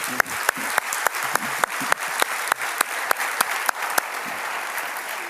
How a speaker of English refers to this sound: There's an awful amount of work that goes into preparing, and you get to do two songs and then you're gone. Now, that's we should applaud them and say thank you.